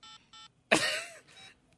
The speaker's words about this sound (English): I'm going to dial it right now.